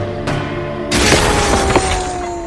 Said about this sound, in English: It's explosions, man. It's a big deal.